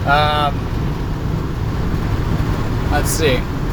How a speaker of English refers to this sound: Wind. Oh, so windy.